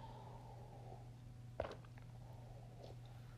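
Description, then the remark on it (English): A single quick sip of water, a short soft slurp, followed by a faint swallow, set against a steady low electrical hum with no talking. “hold on, taking a sip of water.”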